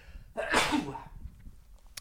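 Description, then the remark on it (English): A single sharp sneeze bursts out, a quick intake followed by a loud explosive release that trails off into quiet background noise. “I think I got a sneeze.”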